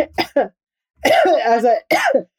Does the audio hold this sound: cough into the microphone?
yes